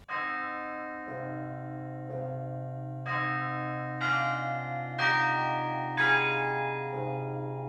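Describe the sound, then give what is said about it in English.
Carillon bells at the top of a tower, played by a carillonneur from the bell chamber just below, ring out a slow melody, one struck note about every second, each tone ringing on and overlapping the next, clear and fairly loud with no voices. “The bells are at the very top, and then at like probably right below there is the carillon bell chamber where the carillonneur plays.”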